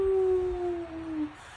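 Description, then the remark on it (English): A whale call: one long, mournful tonal moan that glides slowly downward in pitch for over a second before fading, with a low watery rumble underneath and no voices. “Whales are funny. Who knew that they made sounds?”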